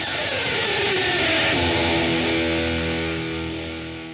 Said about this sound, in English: And instead of like kind of pulling it down over the strings like a strum, you'd start at the bridge of the guitar and you drag the pick up towards the neck at a particular like rhythm. It's usually like kind of fast.